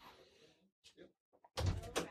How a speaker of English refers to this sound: The door's opening. Here they come.